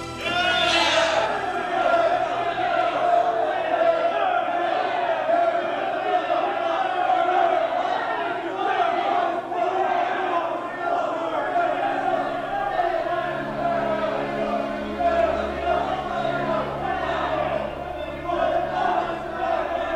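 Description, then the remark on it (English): A large bloodthirsty crowd shouts and roars continuously, many voices blending into a loud, aggressive clamor that stays dense and unbroken throughout. “Lay the whip to his back, and maybe this will satisfy this bloodthirsty crowd.”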